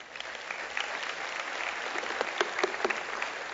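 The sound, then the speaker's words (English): An audience applauds steadily, a dense wash of many hands clapping with a few sharper individual claps standing out, no voices speaking over it. “They never clap in kids' church.”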